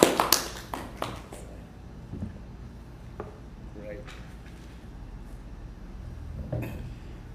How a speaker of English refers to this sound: So I know we can't clap and welcome to the stage to preach. Wherever you are with your families, let's just all clap.